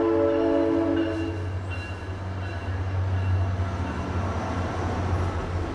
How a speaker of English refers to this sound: The train goes by in like 2 seconds. Now it's 1 second.